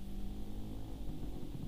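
A scooter engine buzzes steadily as it speeds up the road, a low, droning whine with shifting pitch that holds at a constant loudness throughout the short stretch, with no voices.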